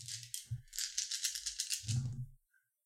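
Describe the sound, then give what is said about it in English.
Dice for a charm roll in a tabletop role-playing game rattle and clatter across a table for a couple of seconds, a quick run of hard clicks with a few dull knocks, fairly loud, then they settle into silence. “Okay, where are all my dice?”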